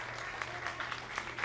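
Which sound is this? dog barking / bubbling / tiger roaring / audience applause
audience applause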